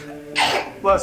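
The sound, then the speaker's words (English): A single sharp, breathy sneeze bursts out, loud and brief, with people talking just before and after it. “Bless you. Bless you.”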